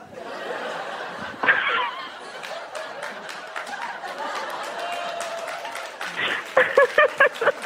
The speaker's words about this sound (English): They're clapping because you just made me throw my glasses 4 feet across the stage.